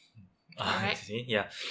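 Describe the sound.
A single sharp, loud sneeze bursts out, a quick breathy intake followed by a forceful, noisy explosion, with a short voiced tail.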